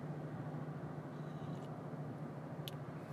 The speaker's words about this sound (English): There's some usual traffic around this time. I don't think there would be more. Like, there's usually not this much traffic, like, around 6.